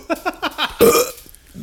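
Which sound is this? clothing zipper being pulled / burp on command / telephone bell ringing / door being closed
burp on command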